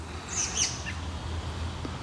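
An American robin in a yard gives a few quick, high chirps early on, fairly faint, over a steady low outdoor rumble with no one talking.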